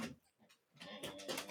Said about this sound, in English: Oh, I'm already hearing that dog grumbling that's gonna lead to dog barking that is gonna lead to bad podcasting.